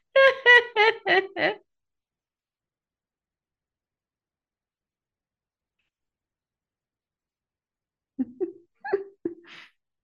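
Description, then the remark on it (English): A quick burst of about five sharp barks from several dogs right at the start, then a long silence before a few softer, scattered barks near the end. “I need to stop these dogs.”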